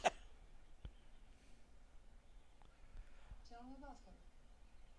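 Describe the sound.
One short, sharp sneeze bursts out right at the start, loud, followed by quiet background noise and a brief murmur of voice near the end.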